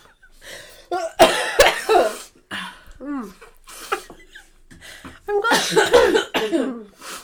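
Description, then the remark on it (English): A coughing fit after eating spicy food: bursts of harsh, hacking coughs in two clusters, separated by strained, wheezy vocal sounds and gasps, loud. “Wait for it. In the back of the throat. He's going to hit you late.”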